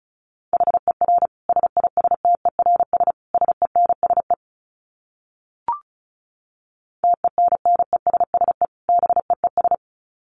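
Fast Morse code at about 35 words per minute: a single steady mid-pitched tone keyed in rapid dots and dashes, two long runs separated by a silent pause broken by one short click.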